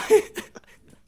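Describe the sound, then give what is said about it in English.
A person fakes a single sneeze, a quick voiced intake followed by a breathy burst, over in about a second, with no other talking. “Yeah, he could sneeze. I'd be like, you need a tissue.”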